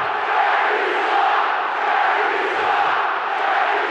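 A large basketball crowd roars in sustained disapproval at a bad foul call, a dense, steady wall of voices booing and shouting for the full four seconds with no individual speech standing out.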